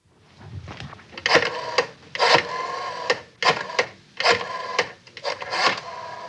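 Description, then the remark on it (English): A rotary phone dial is turned again and again, each spin a short mechanical whirr and rasp of clicks, repeating roughly every second in a steady sequence with no voices. “Rotary phone.”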